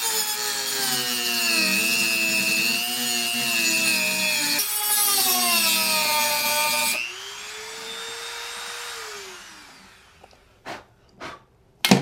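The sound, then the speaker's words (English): A Dremel rotary tool whines at a steady high pitch while grinding through a plastic peg, the tone shifting as it cuts, then winding down, followed by a few sharp clicks. “So with Dremel in hand, let's just take care of this puppy.”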